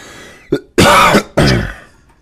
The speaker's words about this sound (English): we need to have a cough button on this episode or on this podcast, because when I listen back and I hear like either of us cough or like clear our throats, I'm like, God damn it, do we need to mute ourselves?